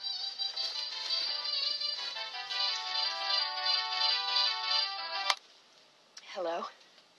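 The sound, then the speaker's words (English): A cell phone rings loudly, a bright, steady electronic tone playing for about five seconds before cutting off abruptly, with Tom Selleck on the other line. A short voiced sound follows after a brief pause. “But anyways, while she is having her moment, her cell phone rings.”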